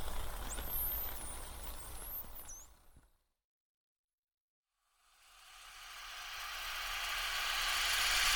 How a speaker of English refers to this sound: This is the noise a ship makes underwater, along with acoustic deterrent devices. Pretty loud, right?